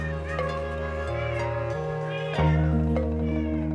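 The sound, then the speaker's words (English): Many cats, well over 25, meow over one another in a house in a continuous, overlapping chorus, fairly loud, with a sustained tonal hum underneath and no one talking. “There were well over 25 cats in the house.”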